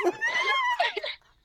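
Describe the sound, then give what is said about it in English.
A puppy whimpers: a drawn-out, high-pitched whine followed by a shorter cry, both fairly loud, then a trailing silence. “Listen, little pup.”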